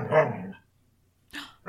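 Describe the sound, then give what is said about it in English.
A dog barks: one loud, full bark, a pause of nearly a second, then two quicker, sharper barks in close succession. No talking. “Hold on, dog's being an asshole.”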